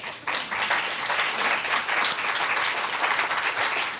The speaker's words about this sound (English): we are officially unveiling Canada's new food guide. And I think we deserve a round of applause for that.